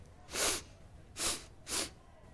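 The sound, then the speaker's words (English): A wizard character sniffs: three sharp, breathy sniffs in a steady rhythm, each a short hissing inhale through the nose, with quiet pauses between them and no talking. “Bjarl sniffs.”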